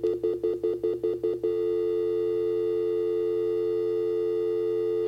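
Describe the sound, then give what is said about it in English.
A landline telephone dial tone from a plastic novelty figure phone as it is turned on: about seven quick stuttering beeps give way to a steady, unbroken hum that holds clear and loud to the end, with no voices. “When you turn him on like that, and you're getting a landline, because this is a landline phone, which is something that I guess kids these days might not be very familiar with,”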